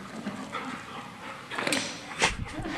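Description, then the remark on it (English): A puppy named Sumi, a female dog, whimpers and lets out a couple of short, sharp barks, with soft breathy noises in between and no talking. “You're a fine puppy.”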